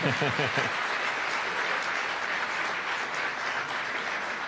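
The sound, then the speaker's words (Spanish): Sustained applause from an audience, called for before the last question of a discussion about the Bible: a steady dense wash of clapping that holds level for several seconds, with a voice briefly audible over it at the start. “Última pregunta, vamos con un nuevo aplauso, ¿está bien?”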